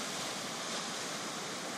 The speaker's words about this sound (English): As you see your beautiful name that's carried you through your whole life, you notice a little wave coming closer. This wave catches part of your name and washes it away as it goes back into the ocean.